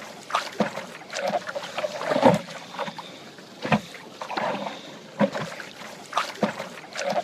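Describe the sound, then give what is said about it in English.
Paddles dip and pull through water in a steady, repeating rhythm, each stroke a splashy swish with gurgling and dripping between strokes. No one speaks. “Are you ready to paddle?”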